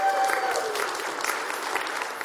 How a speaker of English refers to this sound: What's up, Rooftop? If you love Jesus, go and give him a hand clap this morning. Come on.